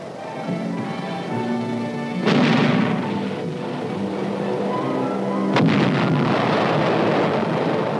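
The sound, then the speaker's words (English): Two heavy blasts from a field artillery battalion firing against tanks, one after another, each a sudden loud boom that rolls off slowly, over a steady low rumble with droning tones and no talking. “One field artillery battalion against 40 tanks. We'd hold them off for a few hours in a blasting frontal attack.”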